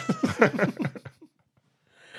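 A cat makes a quick run of close, loud, throaty vocal bursts for about a second, then falls silent; a faint rustle follows near the end.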